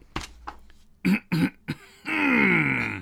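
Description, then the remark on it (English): A person clears their throat: a few short, harsh bursts followed by a longer, voiced, rasping hum, loud and isolated with no talking. “I need to clear my throat for this one.”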